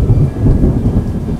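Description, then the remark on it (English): Deep, continuous thunder rumbles loudly through a thunderstorm in Darwin, a heavy low roll that holds steady without pause, with a faint hiss of rain beneath it. “The lightning in Darwin has a huge canvas provided by the clouds of these thunderstorms.”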